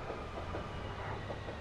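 A Metropolitan Railway train in northwest London rumbles along the tracks with a steady low roar and faint rhythmic clatter, continuous, with no voices.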